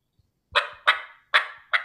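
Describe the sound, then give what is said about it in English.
Four sharp, clipped turkey hen clucks made on a game call, fairly loud, spaced unevenly with quick decays and no talking. “the difference between a cluck and a cut and a yelp of a hen”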